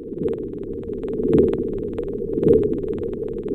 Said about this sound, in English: That's what the seismic air guns that are used to explore for oil and gas on the ocean floor sound like underwater. The sound we just heard was recorded thousands of kilometers away from where the seismic testing was taking place off of Nova Scotia